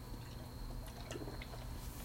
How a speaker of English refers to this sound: Excuse me, I'm gonna take another sip.